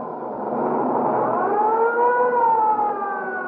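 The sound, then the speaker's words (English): An ambulance siren wails steadily and loudly, its tone rising and sustaining in a long continuous sweep, with a low rumble of engine and traffic underneath and no one talking. The ambulance is on its way to a man run over by a streetcar at the corner of 8th and Hill Street. “The ambulance is on its way now and be here in 2 minutes or less.”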